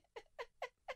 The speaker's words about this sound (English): Cough again